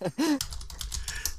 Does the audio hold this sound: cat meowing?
no